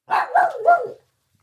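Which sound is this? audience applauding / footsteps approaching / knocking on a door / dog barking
dog barking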